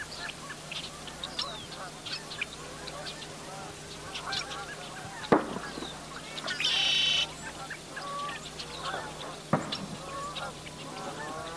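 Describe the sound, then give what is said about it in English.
Geese honk repeatedly in a busy outdoor chorus at sunrise, their calls mixed with chirping smaller birds, a couple of sharp pops, and a steady low hum underneath. “And I don't know, I was really lucky the one day when I went out and got a cow and a dog and all these other little birds and geese coming up with the sun.”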